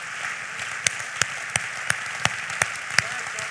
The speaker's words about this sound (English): And so one more time, clap every life group leader in our church. They are absolutely the champions.